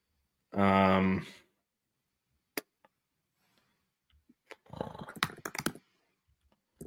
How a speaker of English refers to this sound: I'm doing Derrick Rose, he meant Warriors, and just typing players I know played with him